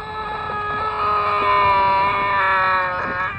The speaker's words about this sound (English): Here's a weird scream.